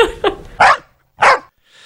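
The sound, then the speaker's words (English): A bull mastiff barks loudly: a few quick, short barks, then two heavier, drawn-out woofs with brief gaps between them, and a faint trailing sound at the end. No one speaks. “I just want to give a shout out to that bull mastiff.”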